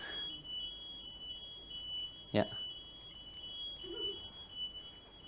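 A continuous, shrill building alarm tone sounds steadily throughout during a sermon, unbroken and high-pitched, with a single dull thump partway through and faint murmuring underneath.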